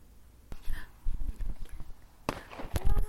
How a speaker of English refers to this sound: There's a couple of just very small but very cute cherry red and green bangers, by which I mean fireworks.